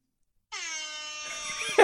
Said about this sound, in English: So I am not controlling the air horn this week.